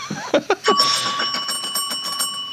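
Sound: bell ringing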